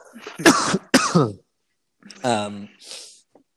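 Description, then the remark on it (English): Two harsh coughs in quick succession, then a pause followed by a rough, voiced throat-clearing sound and a breathy exhale. “that's an interesting cough.”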